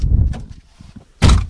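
A car door opens with a low rumbling clunk as someone gets into the car, a few soft clicks and shuffles follow, then the door shuts with a loud, solid thunk.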